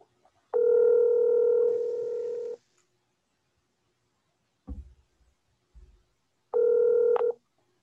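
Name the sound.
telephone dialing tones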